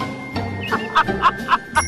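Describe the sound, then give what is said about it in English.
A short, bright jingle of little bells rings out in about five quick, evenly spaced shakes, clear over a faint background murmur. “play the little jingle that you play when you're introducing”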